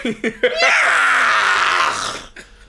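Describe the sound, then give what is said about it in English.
A person lets out a few short choppy vocal bursts, then a long, loud, strained screech imitating a dying cat, wavering for about a second and a half before trailing off. “Like a cat, like a dying cat.”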